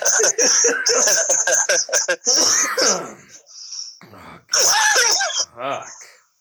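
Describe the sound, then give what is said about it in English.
Someone coughs hard and repeatedly after taking a dab hit of weed: a rapid string of loud, raspy hacks, a short pause, then another harsh burst of coughing and throat clearing. “God damn, you're coughing.”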